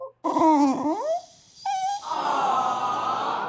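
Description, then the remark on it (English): A puppy whimpers in high, wavering whines that rise and fall, followed by a brief higher whine, then a steady rushing noise fills the rest. “Well, this is probably a good time for us to pause. Puppy pause.”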